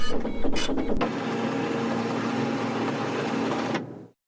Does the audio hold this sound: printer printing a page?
yes